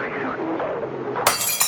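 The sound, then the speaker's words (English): Glass shatters suddenly and loudly with a bright, crashing burst that sprays into scattered tinkling fragments, following a moment of muffled voices in the background. “My mother hasn't broken a glass since 1966.”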